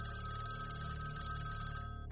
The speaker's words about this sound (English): Soon after she leaves the apartment, at 9:20 p.m., the phone rings.